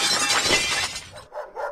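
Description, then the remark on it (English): A brick smashes through a glass window with a loud, harsh crash of shattering glass, followed by a couple of lighter tinkles as shards fall. No voices. “Oi, what bastard threw that brick through my bloody window?”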